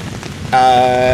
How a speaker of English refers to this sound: So we're at Harry Smith Frolic 2017 in a thunderstorm.